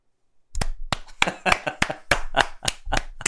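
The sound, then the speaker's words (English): A golf clap: roughly a dozen sharp, slightly uneven hand claps at a steady, unhurried pace, moderately loud, with no talking, starting after a brief moment of silence. “A golf clap.”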